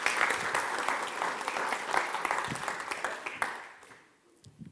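A crowd applauds to welcome a woman invited up to share her story, a dense wash of many hands clapping at a steady level for a few seconds, then thinning and fading out near the end.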